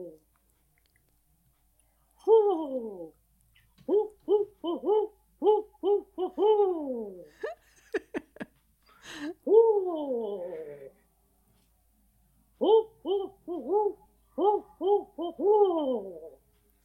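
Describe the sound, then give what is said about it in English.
A person imitates owl hoots to call in neighborhood owls, giving repeated falling, wavering hoots in short bursts, pausing briefly, then another run of quick hoots, fairly loud with no talking. “I'm just going to open the window and see if you can call our neighborhood owls in.”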